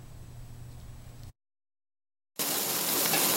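A low hum gives way to a brief silence, then a loud, steady, bright sizzle fills the rest as egg is ladled onto fresh oysters frying on a hot griddle, making a Taiwanese oyster omelette.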